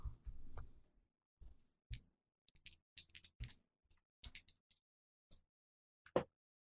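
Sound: dice being rolled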